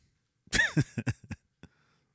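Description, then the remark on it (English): A loud burst of coughing: a harsh opening cough followed by several shorter hacking coughs in quick succession, ending with a faint final cough, with no talking. “Well, I muted that cough on, you know what I mean? But, you might have caught it.”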